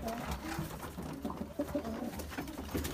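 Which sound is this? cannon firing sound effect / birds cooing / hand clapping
birds cooing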